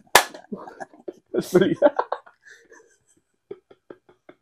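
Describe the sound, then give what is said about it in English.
A drink can is banged with a sharp, loud crack, followed a second later by another heavy hit, with voices chattering around and between the impacts. “This stupid drink is so nice, but while I'm about to bang a can.”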